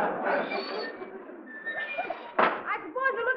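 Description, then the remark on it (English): A single sharp, fairly loud door thump as a visitor arrives cuts in partway through, while several people keep talking around it before and after. “Somebody at the door.”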